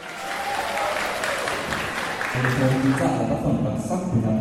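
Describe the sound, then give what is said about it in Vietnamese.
Sustained applause from students of Marie Curie lower secondary school in Hanoi as they recognize which literary work a passage comes from: a dense, steady patter of clapping that swells slightly louder partway through, with excited voices mixed in underneath. “Những tràng pháo tay liên tiếp khi các em học sinh trường trung học cơ sở Marie Curie thành phố Hà Nội nhận ra đoạn nội dung mà các em vừa nghe thuộc trích đoạn trong tác phẩm văn học nào.”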